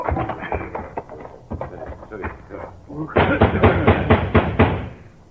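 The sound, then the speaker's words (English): Repeated knocking on a door at night, uneven and moderate at first, then a louder, faster run of heavy pounding blows. “And they would come on horseback and knock on the doors at night.”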